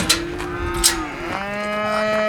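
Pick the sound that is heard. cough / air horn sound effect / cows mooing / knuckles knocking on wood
cows mooing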